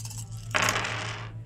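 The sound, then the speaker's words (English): A handful of blue dice clatter and rattle across a hard table in a single burst lasting under a second, settling quickly over a low, steady background hum. “And all those blue dice came up blank.”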